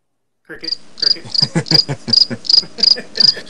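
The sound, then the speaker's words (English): A cricket chirps loudly in a steady, rhythmic series of about nine sharp, high-pitched pulses, with no one speaking. “Cricket.”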